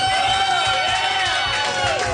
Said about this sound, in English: That was a cheap cheer. That's like slipping on a banana peel to get a laugh.